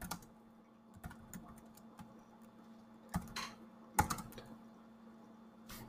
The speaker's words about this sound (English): I'm just typing this up really fast on my computer so I can just pull it right up here.